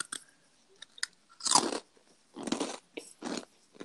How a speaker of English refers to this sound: Is it a nice crunch? Not really. Do it again. I can't be loud because my whole house is sleeping.